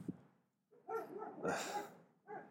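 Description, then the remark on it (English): A dog barks a few times in quick succession, loud, with short sharp yips and a harmonic, slightly whiny tone between the barks. “That's not my dog barking.”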